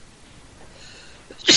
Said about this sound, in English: Hello? I'm gonna sneeze, hello? Okay? Bless you.